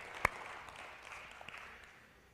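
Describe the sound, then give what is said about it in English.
A church audience claps in praise of Jesus Christ at a morning service: one sharp, crisp clap stands out early, then a steady, soft wash of many hands continues at a fairly quiet level, with no voices. “Can we put our hands together and give Jesus Christ a great big hand clap of praise?”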